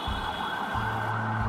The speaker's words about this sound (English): I am in New Delhi, India. First thing is, when you're home, and I work from home, and I work by a window, and I can't stop all day hearing ambulances.